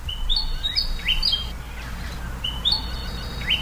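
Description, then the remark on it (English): A bird calls in bushland on a property in Western Victoria, southeastern Australia, at sunrise, with bright, whistled phrases that rise and fall, repeated twice with a pause between, set against a steady low outdoor rumble. “an audio postcard from our Freya McGregor, featuring her latest Aussie avian observation of a bird happily not on the endangered list”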